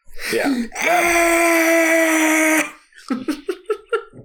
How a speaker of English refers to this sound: It's basically the scream the DJ does. Yeah, that's where it was taken from.